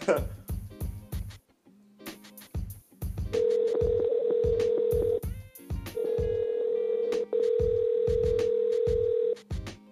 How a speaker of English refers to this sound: and let's hope he answers the phone. Like, let's hope he answers the goddamn phone.